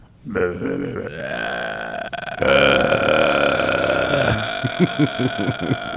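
A long, loud, drawn-out burp with a rough, croaky tone, rising into a strained stretch and ending in a series of choppy, pulsing gulps.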